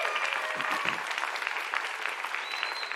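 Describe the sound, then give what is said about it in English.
Sustained applause from a large gathering for guests from the First Blessing group. Dense, steady clapping fills the room at a moderate, even level throughout, with no pauses. “Would you guys give them a big round of applause?”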